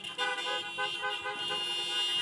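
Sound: car horns honking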